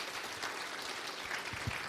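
A crowd applauds steadily, a dense wash of many hands clapping at once, sustained and fairly loud throughout with no voices rising above it.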